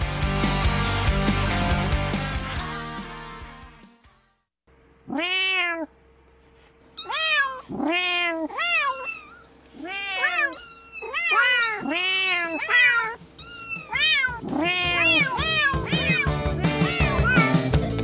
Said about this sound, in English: And in case you don't speak cat